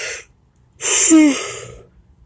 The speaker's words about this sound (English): Sorry again. I rebuke all of these yawns in the name of Jesus.